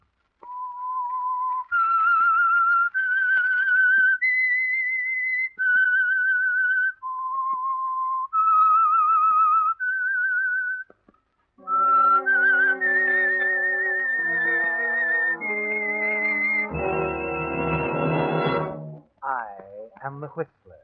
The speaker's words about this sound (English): The Signal Oil Program, The Whistler. That whistle is your signal for the Signal Oil Program, The Whistler.